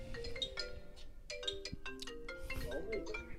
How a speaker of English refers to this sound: We're getting our phone call already. First call in.